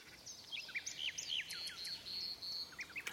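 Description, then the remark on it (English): A clockwork bird sings a quick run of bright, whistled chirps and swooping notes, clear, over a faint steady hiss, with a short high trill in the middle. “A year passed, and the emperor, the court, and all the other Chinese knew every little chirp in the clockwork bird's song.”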